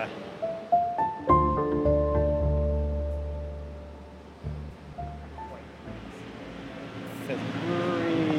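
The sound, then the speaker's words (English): Inside a moving city bus: a steady low engine rumble and road noise, with a rising mechanical whine early on and occasional clunks and rattles as the vehicle travels. “we are in the middle of what's probably going to be a 15 or 20 minute ride here on the bus.”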